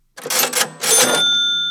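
A cash register rings up a sale: two quick bursts of mechanical clattering, then a bright bell-like chime that rings on and slowly fades. Loud, with no talking.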